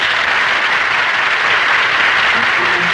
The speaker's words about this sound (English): That's funny. They told me there would be applause here.